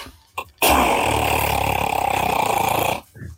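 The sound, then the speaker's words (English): A voice imitates machine gun fire: one loud, buzzing burst of rapid rattling that holds steady for about two and a half seconds, preceded by a short breathy sound. “Do I get to make the machine gun sound effect?”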